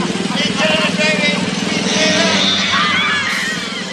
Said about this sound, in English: Connected the wires and started the machine and was quite oblivious to the fact that he was filling the kitchen with clouds of exhaust smoke.